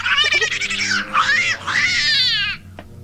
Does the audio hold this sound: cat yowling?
yes